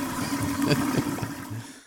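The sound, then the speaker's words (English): A toilet flush sound effect: a short burst of rushing, gurgling water, loud, holding steady for nearly two seconds before cutting off abruptly. No one speaks. “Chris's flush of the week.”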